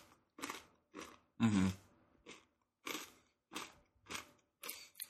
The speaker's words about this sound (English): I feel like I can get more of the cauliflower because you can get more of the crunch from the vegetable in there.